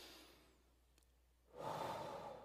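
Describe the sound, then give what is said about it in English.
A soft, airy deep breath drawn in, followed by a louder, steady slow exhale that rushes out and holds until the end. No one speaks. “Go ahead and take a deep breath right now, and then slowly exhale it.”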